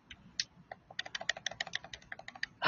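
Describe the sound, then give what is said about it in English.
Rapid typing on a computer keyboard, a quick irregular patter of crisp clicks and taps, with no one speaking. “You mean typing lady?”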